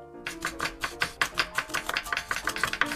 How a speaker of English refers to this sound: Yeah, you can chop the baby zanahorias, and I'll chop the papas or the potatoes, since all the papas are quite a bit bigger than you, buddy.